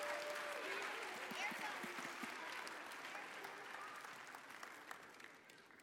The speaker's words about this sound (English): Let's give these kids a round of applause.